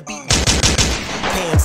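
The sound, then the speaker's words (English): A rapid burst of loud gunshot sound effects, about five sharp bangs in quick succession, then a brief sweeping tail, dominant with no talking. “Okay, that's enough gunshots, man.”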